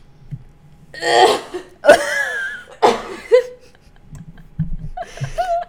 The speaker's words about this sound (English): I don't actually cough like that. The first part was a little faked, but then I did actually cough.